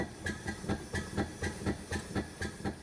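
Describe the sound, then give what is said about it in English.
Steam hisses from a printing press in quick, regular bursts, a steady mechanical chuffing rhythm about four times a second, moderately loud, with no voices. “He spun the taps to cease the flow of steam, and slowly the drum came to a stop.”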